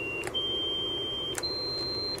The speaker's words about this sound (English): Now, what happens if we increase the frequency of this tone here? Let's go on up a little bit.